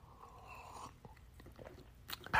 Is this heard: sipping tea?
yes